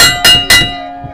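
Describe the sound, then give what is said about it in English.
A wrestling ring bell, rung after the referee called for it, clangs three times in quick succession, each sharp metallic strike bright and loud, then a sustained ringing tone slowly fades out. No voices. “The ref called for the bell.”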